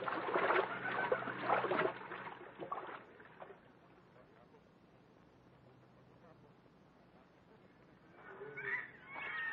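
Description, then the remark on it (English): Water sloshes and splashes as people wade across a river no deeper than their hips, with a loud burst of churning at the start, quieter lapping in the middle, and another surge of splashing near the end. “We can cross the river here, Buona. It will not come above our hips.”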